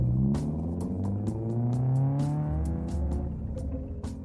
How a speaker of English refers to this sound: once I busted through the back door, I circled the house back to my car and sped away in a hurry.